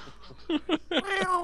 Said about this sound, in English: If you can't sing, don't do karaoke. Someone will say, who's strangling the cat?